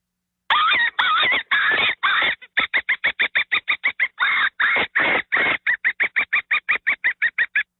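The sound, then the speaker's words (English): A predator call gives a few long, harsh, distressed squeals imitating a dying animal, then switches to a fast, steady run of short, sharp bird-like notes imitating a woodpecker. Loud, with no talking. “So what I did was I did a kill sound. Okay, but then I went into a bird sound, a woodpecker.”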